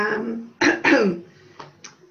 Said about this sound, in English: You've obviously got a bit of a cough. COVID cough, no. COVID cough. Early morning cough.